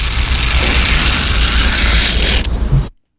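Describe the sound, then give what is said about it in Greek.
A dog nail clipper, a tool for trimming a dog's nails and paws, runs in one loud, steady mechanical burst of ratcheting, grinding noise, lasting about three seconds before cutting off abruptly. No voices are heard. “Είναι για τα πατουσάκια και για τα νυχάκια, κάτι που τους κάνουν, ναι. Που κόβουν τα νυχάκια και τα πατουσάκια.”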